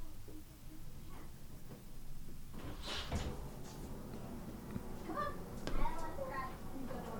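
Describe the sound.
A door is pulled open with a brief scraping thud partway through, while indistinct voices murmur in the background.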